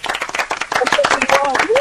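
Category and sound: crowd, round of applause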